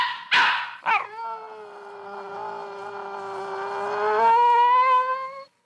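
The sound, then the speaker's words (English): A dog gives two sharp barks, then launches into a long, sustained howl that slowly rises in pitch and swells louder before stopping, with no other sounds. “Tony decided that what he wanted most in life at this moment was a dog.”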